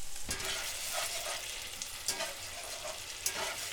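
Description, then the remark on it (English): Reduced concentrated chicken stock hits a hot pan and sizzles steadily, a broad hissing crackle with a few sharper pops and bursts, continuous throughout with no talking. “And now I'm adding my reduced concentrated chicken stock.”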